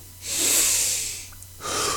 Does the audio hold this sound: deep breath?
yes